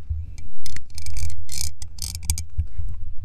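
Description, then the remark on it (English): A snake bites lip piercing clicks against teeth in a quick, irregular series of sharp, bright ticks, fairly loud, over a low muffled rumble, with no talking. “But yeah, so you guys know, I have a piercing. You guys can hear it if I do this.”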